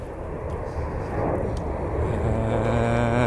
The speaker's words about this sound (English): And I'll be able to watch that jet get airborne, and there it is. I can now see it.